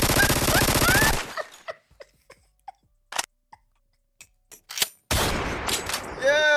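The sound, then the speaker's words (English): Loud, rapid bursts of gunfire fill the opening second and the final stretch, with a scattering of isolated sharp cracks and pops echoing in the quieter gap between. “See, no gunshots. I don't know gunshots.”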